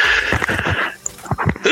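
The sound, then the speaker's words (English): A sneeze with a high, squealing, whinny-like tone, broken into several sharp breathy bursts before a final gasping release, over about two seconds. “Bless you.”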